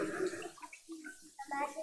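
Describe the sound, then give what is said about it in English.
Water splashes and trickles as it is poured out of a container into tall and short vessels, some landing on a carpet, a soft, fairly quiet pour mixed in with people talking. “Good job it's only water. It'll dry, the carpet will dry, I promise.”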